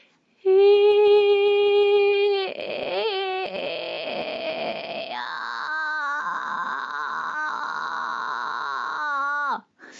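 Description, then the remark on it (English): A voice holds a clear, steady sung note for about two seconds, then, as the airflow is slowly decreased on the same note, breaks into a rough, gritty vocal creak that rasps and wavers for several seconds before cutting off. “So you start off just by singing a note, and then just slowly start to decrease the airflow, but singing the same note. So it will become more like a creak.”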